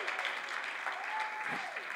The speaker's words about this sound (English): Amen. Give her a good applause today.